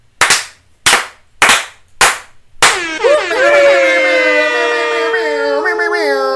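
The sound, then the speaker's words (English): Five sharp, loud slap sound effects land in a steady rhythm, about half a second apart, followed immediately by a long, wavering, howl-like tone that sustains to the end. “How many slaps are you giving …?”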